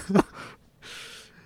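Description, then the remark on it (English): Labored, wheezy breathing of a man in a film scene, after a short run: a sharp strained gasp, then two raspy, hissing breaths, the second longer and steadier. Fairly quiet, with no talking. “He is having trouble breathing.”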